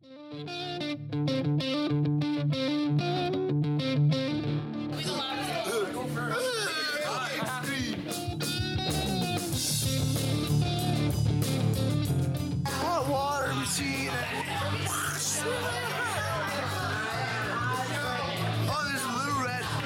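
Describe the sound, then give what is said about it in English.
A squawky, distorted Donald Duck cartoon voice, used as an intro sound effect, warbles and swoops in pitch over a loud, busy musical backing, running continuously for the whole stretch. “The Donald Duck intro.”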